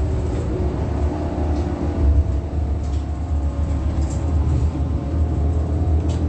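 Steady low rumble inside a moving bus, a continuous engine drone and road noise with faint rattles, fairly loud and unbroken, with no voices.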